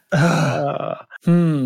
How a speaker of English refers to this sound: a big belch.